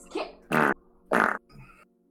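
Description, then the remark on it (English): A series of four fart sounds in quick succession, the middle two loud and sputtering, the first and last softer and shorter, with no talking. “Yeah, I farted.”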